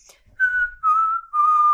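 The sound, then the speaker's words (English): A person whistles a short tune: three clear, sustained notes, each a little lower than the last, with brief gaps between them and no talking. “I'm really good at singing, by the way. And whistling.”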